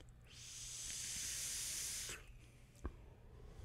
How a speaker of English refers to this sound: And on top of that, I got some cherry smash here that I'm just going to vape while chewing, while eating candy.